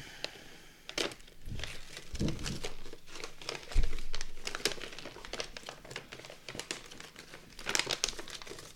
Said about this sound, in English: This is really nice quality wrapping paper. Right? You like that? It's like sick.